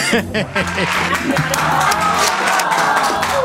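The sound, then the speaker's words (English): A studio audience breaks into loud, sustained applause and cheering, with many voices whooping and shouting over dense clapping that fills the whole stretch. “Have we had applause yet?”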